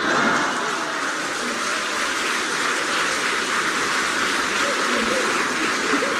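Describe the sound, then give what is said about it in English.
A steady, loud rush of splashing, churning water as someone falls into water, a dense hissing wash with no clear breaks and no talk over it. “He's fallen into water.”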